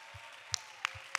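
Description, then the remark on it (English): Hands clap in worship of the Lord in a steady, even rhythm, three crisp claps about a third of a second apart, over a soft low thumping beat and a faint hum. No one speaks. “Clap your hands and worship the Lord.”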